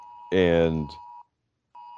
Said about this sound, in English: And I'm sorry, there's an emergency alert on my one of my phones here. Uh-oh. All right. But anyway, okay, because we have thunderstorms over here.